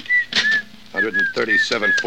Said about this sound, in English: Look, stop that creepy whistling, will you? I'll fix your whistle so it'll never blow again.